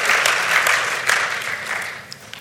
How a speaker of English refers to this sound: Now, that's awesome. Let's clap for those people there. They got the consistency. That's great.